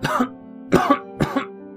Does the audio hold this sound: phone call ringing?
no